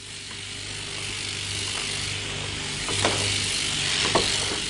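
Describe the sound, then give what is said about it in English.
Electric shears drone steadily while shearing a wool fleece off a sheep in New Zealand, a continuous low motor buzz with a humming pitch, broken by occasional sharp clicks and brief scraping bursts. “Another fleece off the sheep's back.”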